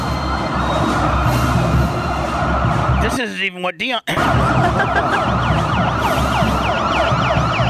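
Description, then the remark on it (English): Loud, continuous wailing sirens of police motorcycles in a motorcade fill the scene, sweeping up and down over a roar of traffic, with a brief pause where a voice speaks before the sirens resume. “I mean, I'll say we have a set of police motorcycles.”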